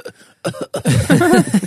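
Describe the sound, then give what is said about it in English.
A person fakes a cough, producing a few short, throaty bursts in a quick, exaggerated run after a brief quiet moment. “It's just that you could cough and your teacher would let you have Ludens in class.”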